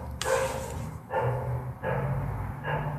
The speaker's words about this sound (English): Can y'all hear that fucking dog?